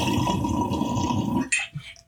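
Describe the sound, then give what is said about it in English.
Loud gurgling of water churning through a smoking water pipe after a hit for about a second and a half, stopping abruptly, then a couple of brief wet splashes and a soft drip. “the gurgler after all these years because it makes obscene gurgling sounds when you're recording podcasts and videos and stuff.”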